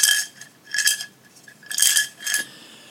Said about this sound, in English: you already heard me pick that up, didn't you? The money from the washing machine.